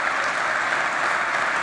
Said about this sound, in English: Still clapping.